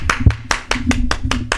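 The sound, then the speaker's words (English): Hands clap in a quick, steady rhythm, about eight or nine sharp claps in under two seconds, fairly loud, with no talking over them. “Let's clap it up.”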